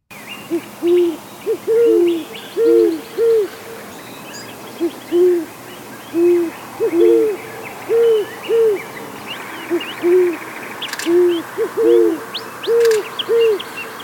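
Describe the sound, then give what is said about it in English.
A male and female great horned owl hoot together in duet, their deep, soft hoots coming in repeated rhythmic series, the male's voice lower than the female's and often overlapping, against a quiet night background. “Our sixth bird takes us into the night with the nocturnal great horned owl.”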